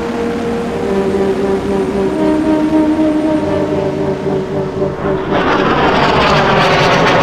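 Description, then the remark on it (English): A low-flying rocket roars overhead, a loud, continuous engine drone with a whining tone that shifts in pitch, turning harsher and noisier in the last couple of seconds. No voices. “A rocket. Low flying from the sound of it.”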